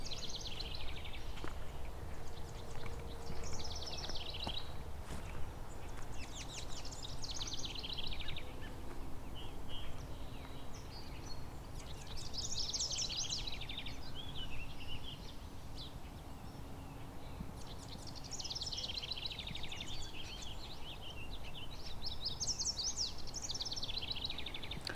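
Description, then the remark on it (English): A house wren sings repeated bubbling, tumbling bursts of song every few seconds against a steady low outdoor rumble, clear, with no talking, in the second week of July. “The house wren here.”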